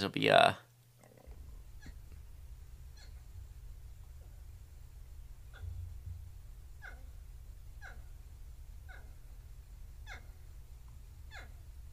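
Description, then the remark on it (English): Porcupine mating calls: a loud, whiny wail opens, followed by a series of short, faint squeaky calls repeating about once a second over a steady low rumble. “So I haven't played this porcupine clip, but let's see.”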